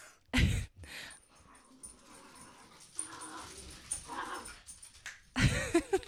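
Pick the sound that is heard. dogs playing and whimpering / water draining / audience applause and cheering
dogs playing and whimpering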